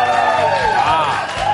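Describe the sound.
A crowd applauds and cheers loudly and steadily on the sports show PTI, with rising and falling whoops and shouts riding over a dense wash of clapping and voices.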